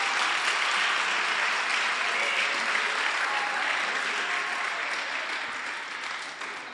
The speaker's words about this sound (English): Clap for me.